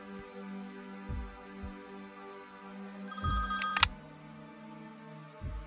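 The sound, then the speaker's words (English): A telephone in a kitchen rings once in a short, bright trilling burst midway through, over a steady low hum with a few soft thumps around it. “She hurried back inside to answer the phone, conveniently located in the kitchen.”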